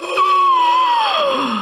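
A loud, close gasp from a single voice, pitched high and carried on into a drawn-out tone that slides downward for over a second before trailing off.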